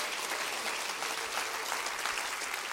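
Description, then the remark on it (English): An audience claps hands steadily for about three seconds, a dense, continuous patter of many hands at an even, moderate loudness with no talking over it. “Clap your hands and say, that's what a spirit-filled life is about.”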